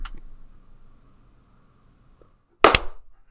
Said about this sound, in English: I fucked up that clap, but that's fine. I did fine on the first one.